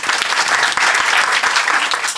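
A crowd breaks into loud, steady applause, dense clapping filling the whole stretch with a bright, crackling texture and no pause.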